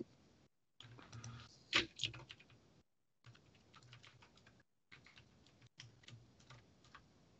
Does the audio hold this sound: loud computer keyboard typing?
yes